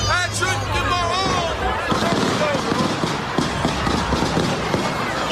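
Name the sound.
burst of gunfire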